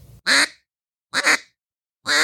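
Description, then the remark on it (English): A duck call blows three loud, raspy quacks, evenly spaced with short silent pauses between them, and no one talking. “I mean, well, you can get a good quack.”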